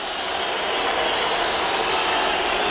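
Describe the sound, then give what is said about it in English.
A large crowd boos loudly after a wrong quiz answer, with scattered cheers mixed into the dense, steady roar that fills the whole stretch without letting up. “It's a boo. There's a bit of cheering in there, but it's a boo.”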